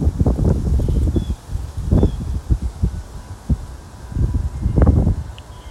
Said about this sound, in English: And you can kind of hear the bells and also the wind blowing through the trees. We're right by a old oak, pin oak.